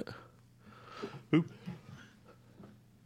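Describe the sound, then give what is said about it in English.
A single sharp sneeze bursts out about a third of the way through, loud against an otherwise quiet background of soft breathing and low room noise. “Damn sneeze.”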